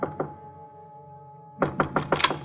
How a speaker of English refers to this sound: I went up the stairs, but when I knocked at his door...